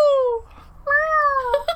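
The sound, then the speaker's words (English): Cats fighting in a yard yowl: a falling, drawn-out wail, a brief pause, then a longer, wavering howl with sharp bursts near its end, loud. “There's a cat fight in the yard.”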